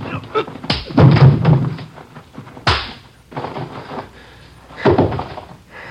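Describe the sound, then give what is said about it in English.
A police officer's blow striking a robbery suspect by a car lands as a heavy, dull thud, followed by two more solid thumps about two seconds apart, with muffled scuffling and rustling in between. “I didn't think I hit him that hard.”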